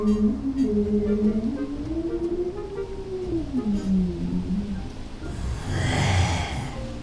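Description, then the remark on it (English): Eerie, whale-like songs of hoverfish and dragon whales: long gliding, moaning tones that rise and fall over a steady hiss, ending in a deeper rumbling, breathy swell. No one speaks. “His ears are filled with the ancient songs of hoverfish and dragon whale.”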